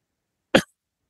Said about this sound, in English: I just had a cough. I apologize.